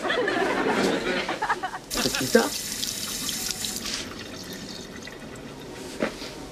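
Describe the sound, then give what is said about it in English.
Water gushes from a tap into a glass for about two seconds, fairly loud, then cuts off, leaving quiet with faint voices and small clinks. “Well, let me get a glass of water.”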